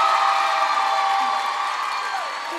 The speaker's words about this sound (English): It's a good place to clap for Jesus.